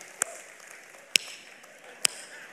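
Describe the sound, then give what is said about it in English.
Three sharp, isolated hand claps land roughly a second apart, each crisp and brief, over a faint steady hiss with no talking. “Listen, if y'all gonna clap, clap.”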